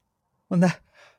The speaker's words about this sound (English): Oh, he's going to sneeze.